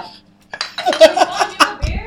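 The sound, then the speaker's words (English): Several glasses clink together in a quick, bright flurry of overlapping chimes, as in a group toast at a house party, with a low thud near the end and faint voices around. “Cheers, you guys. Cheers.”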